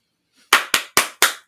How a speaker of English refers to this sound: Oh, don't do the clapping.